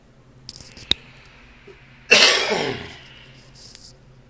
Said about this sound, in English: Excuse me one moment while I cough, and then we're going to go through this.